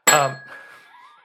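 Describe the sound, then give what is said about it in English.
A single bright bell ding with a sharp metallic strike, then one clear ringing tone that slowly fades over about a second, heard on its own. “All right, let's leave first base and perhaps leave the bell with it.”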